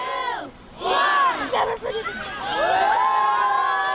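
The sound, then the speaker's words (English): A crowd of many voices shouts together in loud, rising bursts, counting down aloud to the lighting of a Christmas tree at Camp Casey, with excited cheering swelling near the end. “addressed the crowd before starting the countdown”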